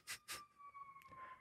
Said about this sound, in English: We can talk about that, the siren outside. Dude, there's been, I think, three or four. It's very busy. Lots of people getting injured at 6 p.m. on Monday, July 12th, apparently.